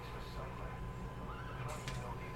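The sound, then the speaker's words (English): In a video game, the horse D-Horse gives a short, wavering whinny over a steady bed of background noise, not loud, with a brief bright burst of sound near the end. “D-Horse is like, hey, what's up?”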